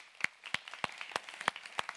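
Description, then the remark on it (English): An audience applauds to welcome first-time guests, a steady patter of many hands under sharp, evenly spaced claps from one person. No one speaks. “So for our first-time guests here, we'd like to welcome you with a hand clap.”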